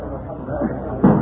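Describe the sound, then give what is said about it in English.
A chair thrown at a door strikes it with one sudden, heavy wooden crash near the end, following a stretch of low, muffled murmuring voices. “I'm going to throw this chair at the door.”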